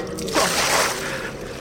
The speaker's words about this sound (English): Holy water. Was that your plan?